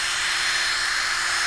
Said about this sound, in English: It's got power to put a screw into a piece of wood real fast. Amen? And I could just go right through this wood. Look at that. Right into the pulpit.